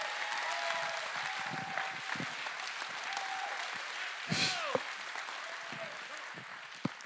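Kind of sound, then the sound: crowd, audience clapping and shouting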